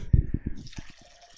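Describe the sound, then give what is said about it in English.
A 9.3% hazy IPA glugs out of a bottle in a quick run of low, hollow pulses, then turns into a fizzy, hissing foam as it spills over. No voices are heard. “We're just gonna let that spill all over the place.”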